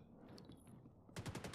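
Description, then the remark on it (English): A quick burst of machine gun fire, about five sharp shots in rapid succession, breaks in after a second of low background rumble. “Yeah, I'm definitely hearing gunshots.”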